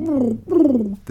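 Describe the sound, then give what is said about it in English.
A voice imitates a fish swimming in the ocean with two wavering, gargly glides that slide downward in pitch, loud and alone, ending in a brief throaty burst. “That was supposed to be a fish noise, so if you heard a Wookiee or a dying cat or something like that, I apologize, but that was supposed to be a fish like swimming in the ocean”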